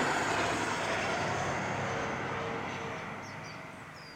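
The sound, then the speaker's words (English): A train on a hidden railway line down below rumbles in a steady, broad wash of noise that slowly fades as it passes, with no voices present. “Oh, are you hearing that train? Like some great mournful beast.”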